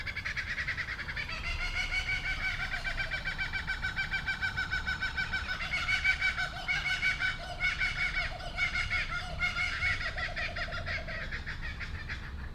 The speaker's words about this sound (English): One morning a few months ago, I woke up to the call of a bird. This isn't unusual. I often hear birdsong in the morning, but this was different. I heard the distinct call of a kookaburra, and it was laughing.